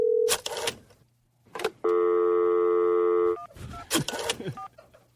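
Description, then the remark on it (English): Telephone dialing tones and clicks, then a steady, loud ringing tone held for about a second and a half, followed by a few more handset clatters; a call is being placed to an award winner, who does not answer. No one speaks. “So we're going to call right now to the person that wins the award. We're calling them a phone right now.”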